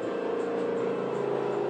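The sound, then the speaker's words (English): A helicopter drones overhead, a steady, unbroken engine roar with a humming low-mid buzz that holds at an even loudness throughout. No one speaks. “A helicopter? They're looking for us.”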